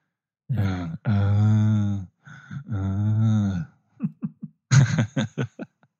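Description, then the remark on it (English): Heavy, strange breathing from a voice opening a song: a few long, groaning exhalations followed by a quick run of short, rhythmic panting gasps, loud and with no talking. “I love how it opens, this version. It's like doing like some weird heavy breathing thing.”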